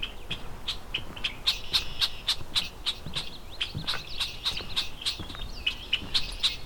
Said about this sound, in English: Unhappy red-winged blackbird.